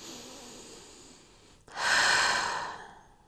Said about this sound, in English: It's that for this moment that you're breathing in and then really breathing out on purpose, there's clarity because you can't worry in the present moment.